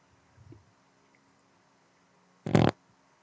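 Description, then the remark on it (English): A single loud, short fart erupts after a faint low rumble, sharp with a broad raspy burst, then everything falls quiet. “He hung up. Oh, he hung up. He couldn't stand the fart.”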